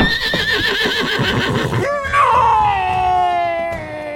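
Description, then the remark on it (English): Dakila, a horse-like creature with a magical rope slipped around its neck by a rider on its back, lets out a loud cry of frustration: rapid shuddering whinnies, then one long high-pitched call that slides steadily downward and trails off. “Dakila roared in frustration.”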